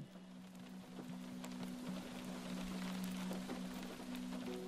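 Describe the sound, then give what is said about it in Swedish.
Steady rain patters against a window pane, heard from inside, with scattered individual drops ticking over a constant wash and a low steady hum underneath; no voices. “Trygghet för mig är att höra regnet smattra mot rutan innanför utan att ofrivilligt behöva dansa i det utanför.”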